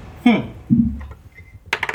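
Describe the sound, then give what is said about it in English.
A quick burst of hard clicking and rattling near the end as dice are rolled across a tabletop for initiative in a role-playing game, following a couple of short vocal murmurs. The clatter is fairly loud. “And roll initiative again, guys.”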